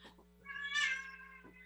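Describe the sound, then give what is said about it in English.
A single drawn-out meow from a pet cat, rising then falling over about a second, against a steady low hum, with a few soft rustles before and after. “She's got to pick the kitty up.”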